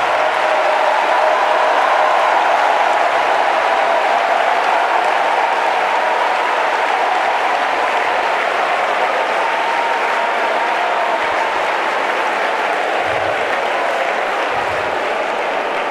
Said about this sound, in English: I think we ought to clap our hands and shout unto God with a great shout.